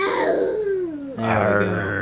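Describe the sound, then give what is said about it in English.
A young child imitates the dinosaur on her pajamas: a strained, high vocal cry slides downward in pitch, then breaks into a loud, raspy, sustained roar-like growl that carries to the end. “That's a dinosaur. What sound does a dinosaur make?”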